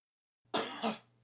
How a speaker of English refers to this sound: I had to cough. You good?